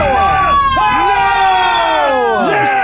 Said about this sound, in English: You've been booed.